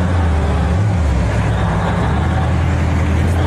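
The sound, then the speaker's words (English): An armored police vehicle drives in with a loud, steady engine rumble and heavy low-end roar, continuous for a few seconds, with no voices. “The police have themselves an RV. That's right. They sent in the car, and Clarence reported on it there.”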